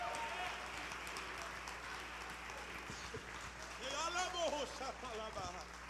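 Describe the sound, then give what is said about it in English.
A church audience claps their hands in a steady, dense wash of applause, giving praise to the Lord, with excited voices shouting and cheering over it, growing louder toward the end. “If you believe it, I need you to clap your hands and give the Lord a great praise.”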